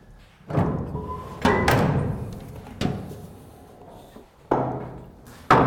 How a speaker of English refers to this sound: I'm opening up the hatch into the boiler room